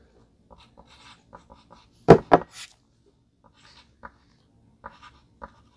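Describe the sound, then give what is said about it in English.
Pen scratching across a sheet of paper in short, scattered strokes, with a brief burst of louder scribbling midway, fairly quiet, no voices. “We should write all this stuff on your sheet.”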